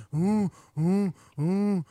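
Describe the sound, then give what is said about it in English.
A person's voice imitates the eerie call of unidentified nesting birds: three evenly spaced, drawn-out hooting moans, each rising and then falling in pitch, with short silences between and no spoken words. “We decided these birds are making noises like this.”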